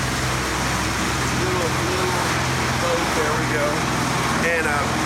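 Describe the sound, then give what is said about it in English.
A boat motor rumbles steadily, a loud, continuous engine drone with a broad wash of noise, while faint voices murmur underneath; a small boat passing by on a river. “And we've got a little boat that's going to be coming by. So you're going to be hearing some noise because we're on the river.”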